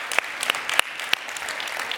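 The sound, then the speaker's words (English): A crowd at a New Life Students church service applauds steadily to welcome first-time guests, a dense wash of clapping with a few sharper individual claps standing out. The sound holds at a moderate, even level throughout, with no voices. “at New Life Students, what we do is we welcome our first-time guests with a round of applause.”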